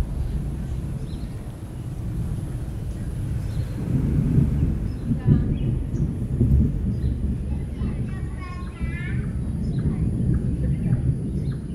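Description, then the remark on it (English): Deep, rolling thunder from a thunderstorm in Singapore rumbles steadily and swells in the middle, heavy and getting closer, while faint bird chirps flicker above the low roar toward the end. “The thunder sounds like it's getting closer now.”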